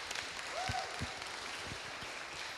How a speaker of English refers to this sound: Is it weird to clap? Thank you. Can we clap? Just thanks for everyone who held this together.